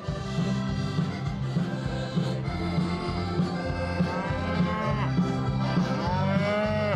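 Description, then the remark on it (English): Several cattle in pens along a main street, kept for children to pet and feed, moo repeatedly, long drawn-out bellows overlapping one another above a steady background hum of a crowded outdoor space. “Along the main street, pens with animals for children to pet and feed. Cattle, sheep, and talking horses.”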